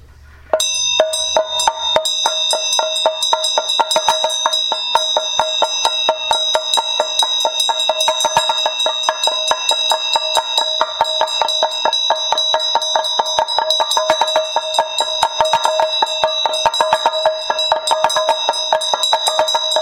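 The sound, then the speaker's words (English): A small ritual bell rings continuously with bright, sustained tones while a damaru hand drum rattles in rapid, steady strokes. Both are loud, with no voices for about twenty seconds. “as you hear the bell and the damaru, think that all these blessings are showering down like snowflakes dissolving into an ocean.”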